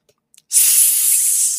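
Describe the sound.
A voice imitates a snake's hiss: after a couple of faint clicks, one long, loud, steady sibilant hiss starts abruptly and holds for over a second without fading.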